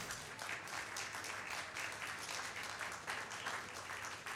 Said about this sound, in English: Go ahead and clap.